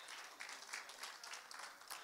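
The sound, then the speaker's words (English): A crowd claps their hands together in a steady, dense patter of applause, fairly soft overall with scattered sharper claps standing out, and no voices over it. “If you would, clap your hands, and then you may be seated.”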